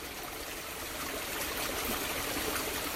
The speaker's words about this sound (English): And now there's, you know, in this moment, there's different type of energy where it's wanting to be, you know, it's not like this quick flowing creek that I'm standing next to.